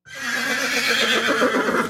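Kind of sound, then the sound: animal, horse neighing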